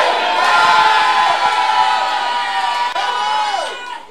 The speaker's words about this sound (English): If you can scream that amen, in the first 7 days of October, they will be established.